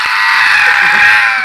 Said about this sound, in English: I'm pretty sure that scream woke us all up.